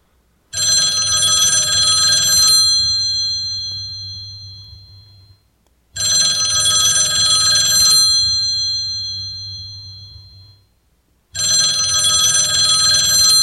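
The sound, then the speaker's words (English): A rotary telephone's bell ringer, two small metallic bells with a clapper between them, rings loudly in three long bursts, each a rapid metallic trill lasting a few seconds before pausing, with no voices present. “And it's surprising, you know, that ringer was actually, you know, two metallic little bells with a clapper in the middle”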